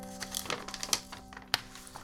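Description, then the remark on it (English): Quiet rustling and crinkling of sheets of many different kinds of paper being shuffled, with a handful of irregular soft crackles and one sharper rustle near the end over a faint steady hum. “I thought this was actually just a ream of paper, but it's all sorts of different kinds of paper.”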